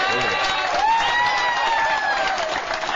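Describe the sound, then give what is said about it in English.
An audience at an Alcoholics Anonymous meeting breaks into steady applause, a dense, continuous patter of many hands clapping, with whoops and cheering voices rising through it for about three seconds. “Where I come from, we kind of applaud.”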